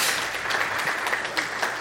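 A church audience applauds a reverend ordained there 17 years ago, in a steady, dense patter of clapping that holds at an even level throughout, with no voices rising above it.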